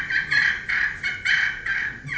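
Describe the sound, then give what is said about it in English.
A turkey purr made with light pressure on a slate friction call: a fairly loud, raspy rolling trill that swells and fades in about five quick pulses, with no talking. “Purr is just real light pressure. And then a fighting purr, more pressure.”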